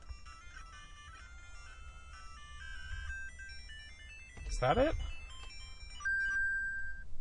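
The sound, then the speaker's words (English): The Tune of Echoes plays in a video game, a chain of bright, stepping electronic notes with sustained tones, briefly broken by a louder flurry midway; a voice speaks a short question over it. “So let's see, I believe we need to go over here and equip the Tune of Echoes?”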